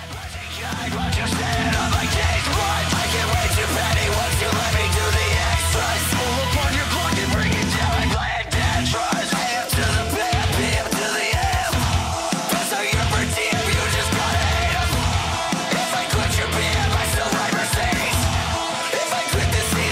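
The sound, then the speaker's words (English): A cover of a hip-hop song plays loud and full for the whole stretch, with a heavy low-end beat and forceful vocals, pausing for a split second midway before charging on. “they literally today just released a … cover of his song …”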